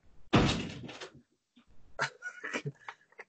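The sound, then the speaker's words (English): A door swings open with a broad, loud thump-like burst as a cat is let out, followed by a short pause and then a second round of rattling, knocking door sounds as it closes. “let me let my cat out real quick because it's scratching on the door, making an annoying sound.”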